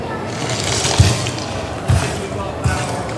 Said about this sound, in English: Got a humanimal kind of type one here, so we've got some cracky bone sounds.